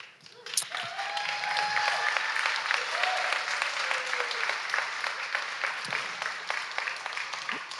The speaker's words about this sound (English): Y'all aren't supposed to clap yet. I'm not done.